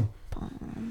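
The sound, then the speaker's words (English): A single short, sharp sneeze bursts out abruptly and then cuts off, followed by a low rumbling murmur of background sound. “Bless you.”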